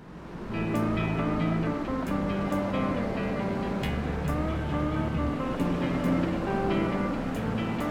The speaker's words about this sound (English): But, you know, maybe with the wind in your face. They could have added some wind. Yeah. Like this.